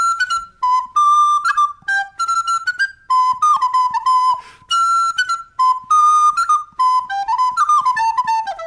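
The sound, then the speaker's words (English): A boy plays a quick, bouncy dance tune alone on a tin whistle while people dance, its bright notes skipping up and down in a steady lilting rhythm, loud throughout. “Finally, little Freddy had had enough fun, tucked the whistle back in his pocket.”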